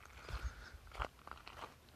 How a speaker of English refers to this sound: Excuse these footstep sounds while I'm walking towards the paved road.